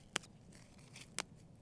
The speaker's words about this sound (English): These fields are covered in alfalfa, a type of hay which is grown across the Southwest to feed cattle. I'm going to pluck a little piece out of the ground that's kind of growing rogue here over in the ditch.